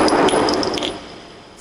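A single gunshot sound effect: a loud, harsh burst of noise with metallic ringing that fades out over about a second, heard alone without any talking.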